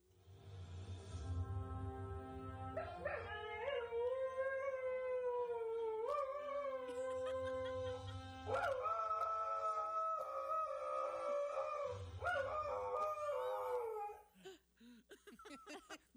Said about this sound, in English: This is audio of a cute little puppy dog singing Star Trek. Here.